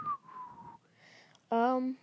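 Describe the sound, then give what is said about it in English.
A person whistles a single steady, slightly falling note for under a second, moderately loud, followed after a brief pause by a loud, buzzy voiced sound. “So you're just whistling.”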